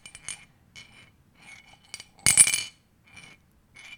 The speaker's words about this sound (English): Okay, what is this noise? It's something in a glass clinking. Okay, I'll give you that. It's a coin clinking. It is a coin clinking.